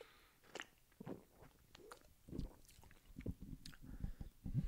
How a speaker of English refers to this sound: Today's sponsor, Orange Cream, baby. Let me take a sip of this.